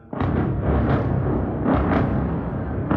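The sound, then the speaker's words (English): Loud, heavy explosions in Gaza City, heard in the morning, rumble one after another, several booming swells rising out of a dense, continuous low roar that lasts throughout, with no voices. “Those are explosions heard earlier this morning.”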